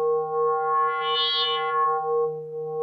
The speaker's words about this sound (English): Oh, this two operator FM is kind of cool.